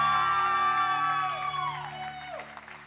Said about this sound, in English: Come on, let's give Jesus even a bigger hand clap of praise.